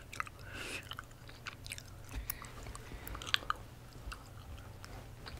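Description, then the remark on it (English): Chewing raw honeycomb: sticky, wet mouth sounds with soft clicks and small crunches of wax, irregular and fairly quiet over a low steady hum, with no talking. “eating raw honeycomb, soft speaking rambling, mouth sounds, whispering, tapping,”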